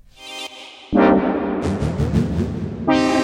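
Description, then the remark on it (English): Loud synthesizer chords with heavy reverb turned up high on the synth's onboard effects: a sustained buzzy tone gives way to a thick, washy swell of layered notes, then a bright new chord enters, with long echoing tails throughout. “Now you probably hear there's quite a lot of reverb on here, and that's because I've just got it. I've got the reverb pumped up, baby.”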